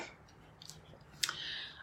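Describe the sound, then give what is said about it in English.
A quiet sip from a drink: a few small wet mouth clicks, then a sharper click followed by a soft, airy slurp as liquid is drawn in. “So excuse me for sipping to keep keep it open.”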